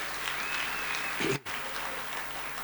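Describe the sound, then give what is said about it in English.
Sustained audience applause, a dense wash of many hands clapping that fills the whole stretch, briefly cutting out for a moment midway before resuming at a steady, moderately loud level. “Come on, let's give Clive a great hand of applause.”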